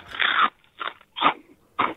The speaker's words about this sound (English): chuck a chip in your mouth. We're going to try and listen and guess what it is.